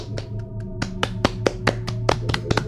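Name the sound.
applause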